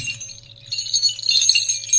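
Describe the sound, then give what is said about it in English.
A string of three different small bells jingles in a steady, bright metallic shimmer, growing busier and louder after a softer start, with a low steady hum underneath and no voices. “There's three different bell sounds, because there's three different bells in this string.”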